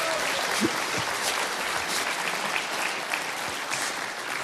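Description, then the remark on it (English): An audience claps steadily for several seconds for a participant who answered correctly, a dense, even wash of applause at a constant moderate level with no voices standing out. “Let's give Kate a huge hand.”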